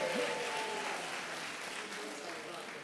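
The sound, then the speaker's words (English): An audience claps steadily for children, a dense, even wash of many hands with a faint voice or tone briefly audible at the start. “Please help me, let's clap for these great, great leaders of the future.”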